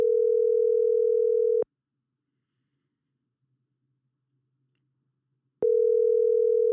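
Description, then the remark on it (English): A phone ringback tone on an outgoing call to an acquaintance, made on a Sunday after noon: a steady, clear electronic buzz that stops, falls silent for about four seconds, then sounds again. No one speaks over it. “I know somebody I can call. All right, let's call this guy.”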